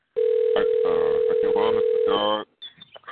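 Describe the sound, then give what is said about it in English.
A phone line's steady electronic ring tone holds for about two seconds, loud and tinny, with muffled voices mixed in over the narrow telephone-band audio before it cuts off. “I don't know what's going on with this ringing of the phone. Is that somebody's phone actually ringing?”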